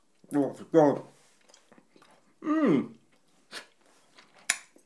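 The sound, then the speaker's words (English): Someone chews a salmon-pink, slightly cola-flavoured chewy lozenge sweet, with soft, irregular wet clicks and smacks between several short, pitched vocal murmurs, ending with a sharper smack. “This is a salmon pink lozenge of flesh-coloured chewy stuff.”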